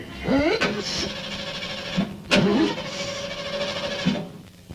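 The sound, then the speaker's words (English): A car engine cranks and sputters, straining to start but never catching, with two sharp bursts and a steady whining drone throughout, fairly loud. “But for now, could you please give me a little push?”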